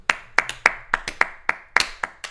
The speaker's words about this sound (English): Dude, gotta clap it up again, man. Gotta clap it up.